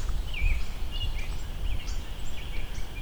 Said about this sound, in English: American robin singing, there's a European starling singing.